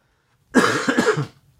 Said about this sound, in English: It's not a COVID cough, just a dry cough.